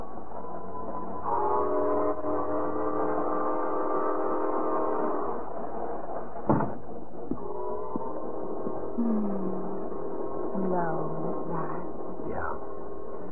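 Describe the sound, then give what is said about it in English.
A train pulls away from a depot, bound for Detroit, with long, loud blasts of its horn over a steady mechanical rumble, punctuated by sharp metallic clanks and a few shorter horn notes near the end. “the wedding party rushed Jane and Bill to the depot just in time to push them aboard the train for Detroit”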